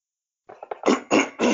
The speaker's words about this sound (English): let me clear my throat here.